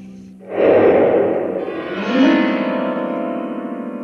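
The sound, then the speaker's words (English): A firecracker explodes inside a grand piano with a sudden loud bang that sets the strings ringing, leaving a dense, reverberant metallic drone that slowly decays over several seconds, with no voices. “I once shot a firecracker off in a grand piano.”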